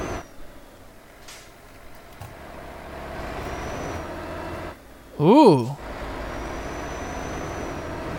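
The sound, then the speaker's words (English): A newly bought truck is started and its engine runs with a steady, raspy, blowy rumble throughout, briefly dipping before a short, loud exclaimed "ooh" with wavering pitch, then the engine drones on evenly. “There's me starting my new truck.”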